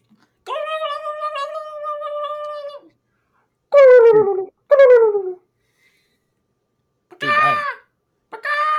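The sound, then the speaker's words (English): A person imitates a turkey: first a long, steady, nasal call, then several short, warbling bursts that fall in pitch like a gobble, separated by brief pauses. “I don't think that's sound turkeys make.”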